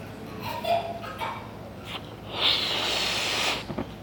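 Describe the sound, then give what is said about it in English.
A pastor blows up a balloon while preaching a sermon, with a few short, breathy puffs followed by one long, forceful hissing exhale, with a brief squeak in the rubber; no one speaks. “I know, never ever have I ever blown a balloon up while preaching a sermon.”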